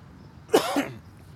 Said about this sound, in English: Sorry about the cough.